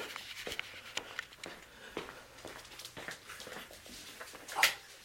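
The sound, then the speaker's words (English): A dog whimpers briefly near the end, a thin high whine over a low indoor hum and scattered soft clicks and rustles in a bathroom, with no one talking. “The dogs wonder what I'm doing.”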